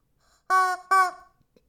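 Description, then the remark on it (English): Two loud, harsh squawks from a chicken called Charlie Chicken in quick succession, each about a quarter second long, with no talking around them. “Charlie Chicken over here squawking up a blue streak.”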